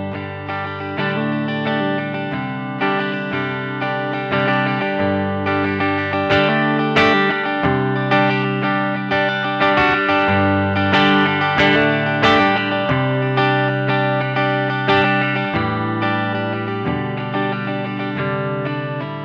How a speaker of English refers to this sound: For a really clean sound, I went to the normal channel, volume at 3 o'clock, and the tone maxed all the way out, and so I got this nice clean tone.